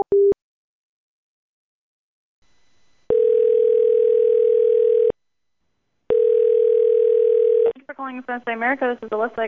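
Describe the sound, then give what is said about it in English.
After a phone call is hung up, a short beep, then a steady, loud telephone dial tone sounding in two long stretches with a pause between, before a voice begins speaking. “Okay, I'm gonna hang up the phone with you right now because you're starting to get volatile and I'm not gonna accept this type of conversation from you, okay?”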